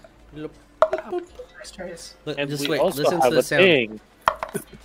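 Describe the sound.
Dice clatter and tumble across a tray in a series of sharp clicks and rattles, with a voiced, humming sound rising and falling through the middle stretch.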